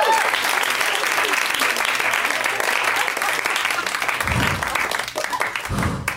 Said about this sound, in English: Round of applause for these people.